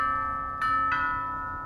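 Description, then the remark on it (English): A doorbell chime rings two quick tones, a ding-dong with clear ringing overtones that linger and slowly fade, with no one talking. “We should get the door.”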